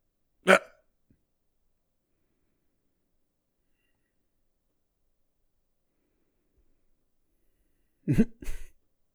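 A girl struggles to breathe during an allergic reaction at a party: one sharp, raspy gasp, a long silence, then two more choked, strained gasps close together, with no talking.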